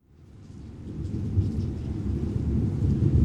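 A deep, continuous rumble of thunder builds and swells beneath steady falling rain on a rainy night in Hollywood in 1969, loud, with no voices present.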